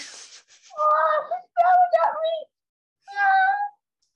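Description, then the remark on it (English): A male cat asking to go outside gives three drawn-out, fairly loud meows, the first two nearly back to back and the third after a short pause, each a wavering mid-pitched wail, preceded by a brief faint hiss of noise. “No, he's yelling at me and I have to yell back or he won't understand me.”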